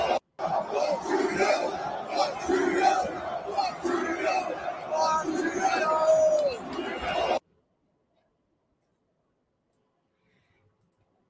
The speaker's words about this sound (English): And here's the footage again of the crowd chanting. During the fight, this is what the crowd was chanting.